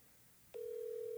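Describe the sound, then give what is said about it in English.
A phone line tone for an outgoing call to a woman who is probably cleaning: after a short moment of near silence, a steady mid-pitched electronic tone starts abruptly and holds unbroken to the end, with no talking. “She's probably cleaning. Let me just call her.”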